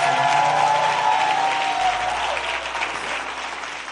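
An audience at the close of a First Love Church London service applauds steadily, a dense wash of many hands clapping at once, loud and sustained throughout with no voices standing out.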